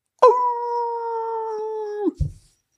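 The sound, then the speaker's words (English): A human voice imitates a dog howling: a single long, steady howl held for nearly two seconds at an even pitch before breaking off abruptly, followed by a brief low thump. “I don't know why he's howling like the moon, like he's at the moon. Hmm. I don't have another howl.”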